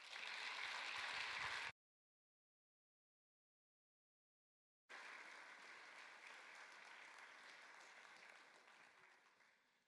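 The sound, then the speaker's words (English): A church audience clapping together for a preacher as he comes forward, in dense, steady applause, stopping abruptly, then after a few seconds of silence resuming as a sustained, even wave of clapping. “And so as he comes today to continue in the book of James, could we just clap for him as he comes forward?”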